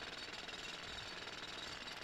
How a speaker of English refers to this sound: She peeps through the blinds at who's doing the drilling.